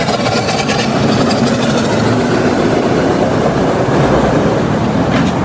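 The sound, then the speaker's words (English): An antique White steam car, the 30 horsepower model featured on Jay Leno's Garage, runs with a steady, loud rumbling chug and a broad hiss of steam, continuous for several seconds with no talking over it. “Sounds like steam.”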